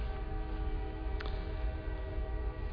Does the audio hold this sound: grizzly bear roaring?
no